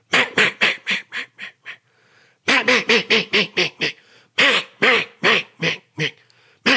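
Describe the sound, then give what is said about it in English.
A duck call sounds three loud runs of raspy hen mallard quacks, each sequence of six to nine notes tapering off, separated by brief pauses. “But that's where that air is getting that inflection, that larynx. Some people say larynx. I think the correct pronunciation is larynx, but so that hen mallard starts to come alive.”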